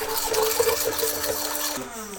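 An immersion blender whirs steadily through a bright green soup, blending it to a smooth consistency, a loud, continuous motor buzz with a humming tone that drops slightly in pitch near the end. No one speaks.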